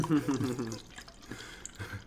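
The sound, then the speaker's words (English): Empathy Wine, with a little cork in it, pours into a glass, a soft gurgling trickle with a few drips, while a voice murmurs briefly at the start. “Pour is nice. Got a little cork in there.”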